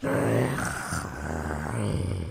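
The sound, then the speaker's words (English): A person imitates a dog's growl: a low, rough, throaty rumble held steadily for a couple of seconds, fairly loud, with slight wavering in pitch and no words. “Then he growled. Then he barked. Oof, oof, oof, oof. And growled again.”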